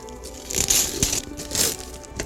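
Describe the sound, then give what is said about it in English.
Christmas gift wrapping paper being torn open in a few quick, bright bursts of crinkling and ripping, with rustling between them, moderately loud and without any talking. “Hey, it's the same shape and the same wrapping paper.”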